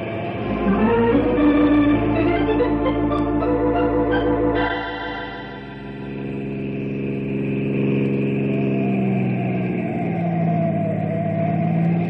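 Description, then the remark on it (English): A car engine revs hard and roars, pitch climbing then dropping as it shifts, with a steady loud drone continuing throughout, as the car tries to shake off a pursuing patrol car; no voices are heard. “That patrol car's following me. But I'm gonna shake him and get away.”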